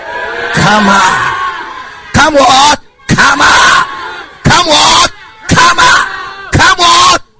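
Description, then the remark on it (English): A large crowd shouts together in loud, repeated bursts, about six roaring waves separated by brief pauses, energetic with voices blending into a mass yell. “We are shouting, come on.”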